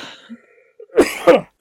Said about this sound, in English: I'm going to cough.